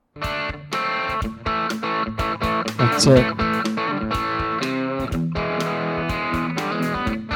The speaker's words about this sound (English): I finally found the blues riff. Look. Oh yeah. I'm gonna post it in the chat for everybody. Look a brother up. We're gonna hear that stereotypical blues riff in the chat.